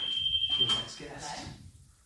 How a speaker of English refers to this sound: Doorbell's ringing. This is in my very swish podcast studio. You see, I don't get this problem at home. Who could that be?